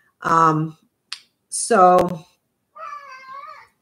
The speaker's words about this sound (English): There's my cat Binkles, who's understanding my problem.